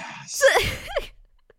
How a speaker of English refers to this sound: gasp.